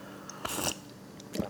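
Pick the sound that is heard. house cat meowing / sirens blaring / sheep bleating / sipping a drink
sipping a drink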